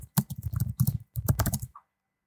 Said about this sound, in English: You can leave in my typing audio for this.